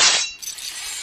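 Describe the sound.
A voice imitates Wolverine's metal claws snicking out: a sharp, bright hiss of a 'shing' followed by a thinner, sustained sizzling ring that fades over about a second. No talking.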